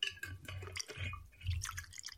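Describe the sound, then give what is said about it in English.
Whiskey pours into a glass, a short trickling, dripping stream with bright splashy detail, heard on its own with no talking. “Now, I was told that people like to hear the sound of it pour.”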